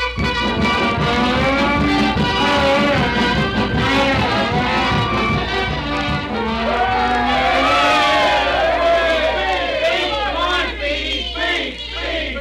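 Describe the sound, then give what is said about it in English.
A large crowd at a railroad station, where the whole town of Waukegan has turned out to see Speedy off, cheers and shouts without pause, many voices overlapping in a loud, steady roar, with scattered whoops and higher excited cries rising out of the din. “We now take you to the railroad station where the whole town has turned out to see Speedy off.”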